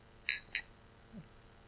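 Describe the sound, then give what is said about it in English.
Two bright, quick clinks of glasses of freshly poured beer touching in a toast, about a quarter second apart, followed by a faint low thump in otherwise quiet surroundings. “We got a lot to get to, but the beers have been poured. So here we go. Cheers.”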